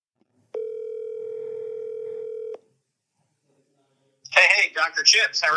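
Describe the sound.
A telephone ringback tone sounds once as a steady, clear two-second buzz, followed by a brief silence before a voice comes on the line and starts talking.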